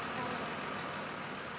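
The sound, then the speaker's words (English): A car engine idles steadily at a bay filled with cars in the automotive program of Northern Virginia Community College, where students practice skills on the cars, a continuous low rumble with a broad hiss, fairly quiet and unchanging for the short stretch, with no voices. “We are standing outside a bay. It is filled with cars. And there are students here who are practicing skills on the cars.”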